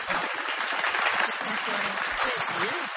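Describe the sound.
A round of applause from a crowd fills the whole moment, dense steady clapping at fairly strong level with faint voices murmuring underneath.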